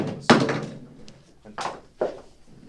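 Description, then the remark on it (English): A heavy thump of something tumbling off a chair, loud, followed by two softer knocks about a second later as it settles. “just fell out of the chair.”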